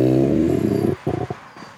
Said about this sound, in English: Do you think it's a real wolf? Yes, I do. Yeah, it sounds legit to me. Yeah. I was going to say the opposite. I was going to say I think it's a human imitating a wolf.